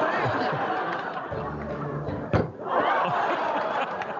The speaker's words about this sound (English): Close the door open. Close the door.